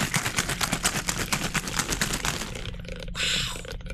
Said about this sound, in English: All right, get ready for the shaking noise in the microphone.